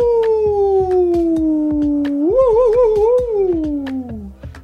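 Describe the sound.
Voices howl together in one long, loud imitation of a wolf, the pitch sliding slowly downward and wavering in the middle before tapering off, with a few sharp clicks behind it.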